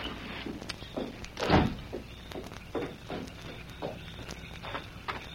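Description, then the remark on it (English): A house door thuds open with a heavy knock, followed by a steady series of footsteps of someone leaving the house, moderately quiet, with no voices. “Colorado kid is leaving the house. Come around the door, we'll meet him.”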